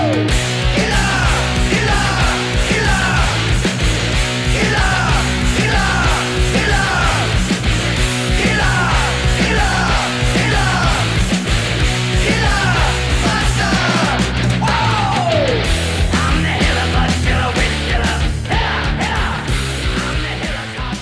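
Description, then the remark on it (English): Loud live rock music fills the Hollywood Bowl as a packed crowd shouts the song's chorus along with the band, the chant repeating in a steady rhythm throughout. “everyone, the whole bowl was shouting, …”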